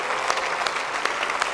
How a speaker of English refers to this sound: Praise the Lord. Praise the Lord. Let's give him a hand clap of praise. Clap your hands, all you people.